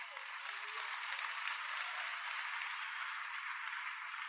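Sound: audience applause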